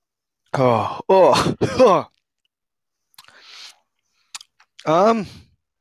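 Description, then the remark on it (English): A quiet slurping sip of banana liquor and a soft swallow click, framed by throaty groaning vocal sounds before and a drawn-out appreciative groan afterward. “Well, here, let me have a sip right now.”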